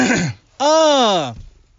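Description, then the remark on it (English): A man clears his throat: a short rough burst, a brief pause, then a longer, louder voiced hum that rises and falls before trailing off. No one speaks. “Let me clear my throat.”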